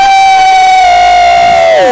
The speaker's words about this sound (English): Your shouting is very weak.